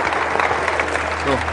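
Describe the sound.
An audience breaks into a steady round of applause, dense overlapping clapping that stays loud throughout, with a brief voice rising over it near the end.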